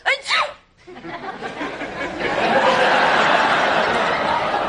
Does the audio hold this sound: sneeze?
yes